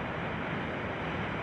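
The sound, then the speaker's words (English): A steady, soothing wash of ocean surf, broad and even like a sleep machine's wave setting, playing at constant low volume with no voices. “A lot of people may have this on, like, if they have a sleep machine or something. Nice, calming sound. Waves.”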